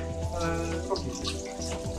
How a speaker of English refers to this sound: It's washing dishes. It's washing dishes. It's washing dishes.